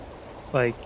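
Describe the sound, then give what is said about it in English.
Hot spring water gushes strongly, with power just a little less than a fire hose, in a steady rushing hiss, briefly overlapped by a short voiced exclamation partway through. “It's almost like, it's just a little bit less than like a fire hose as far as power goes.”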